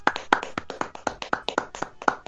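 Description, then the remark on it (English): A brief round of applause from a small group, with a dozen or so sharp, brisk hand claps in an uneven rhythm and no one speaking. “We just get a round of applause for episode 50.”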